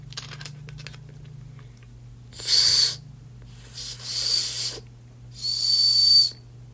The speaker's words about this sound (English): That's a piece of shit. That's a really bad whistle. I would not trust that whistle with my life. So, 1 star out of 10 for the whistle.